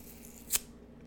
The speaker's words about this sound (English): So, if y'all hear some tearing of paper in the background, I'm tearing some paper up.